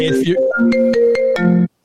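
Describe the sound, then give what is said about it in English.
A ringtone from a phone left switched on plays a short electronic melody of steady tones with clicky note changes, fairly loud, cutting off abruptly after under two seconds. “That was called unprofessional. You left your phone on.”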